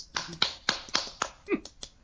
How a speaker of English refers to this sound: So at this time, I'd like to give a round of applause for consistency. Yay!